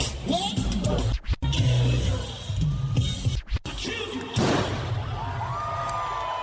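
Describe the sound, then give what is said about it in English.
A loud crowd at a live event cheers and roars continuously after a pyrotechnic concussion effect played during a song, with a couple of sharp thuds briefly cutting through the noise and rising whistles near the end. “And there you hear people cheering.”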